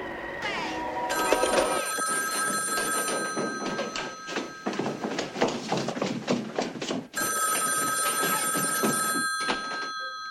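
A loud, shrill telephone bell rings in two long, sustained bursts separated by a brief pause, over a busy layer of background noise; a phone ringing at a sorority house in a movie.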